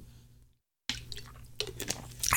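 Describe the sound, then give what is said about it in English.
A short pause of silence, then wet mouth sounds of someone sipping a shot of Jack Daniel's whiskey, with smacking and a gulp growing louder toward the end. “This is some good old Jack Daniel's sipping whiskey. So here we go.”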